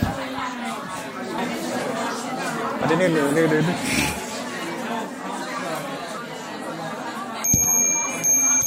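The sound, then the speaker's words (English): Many people chatter over one another while talking in teams during a one-minute timed task, and near the end a bright, sustained bell tone rings out over the crowd noise. “I don't know if that bell went.”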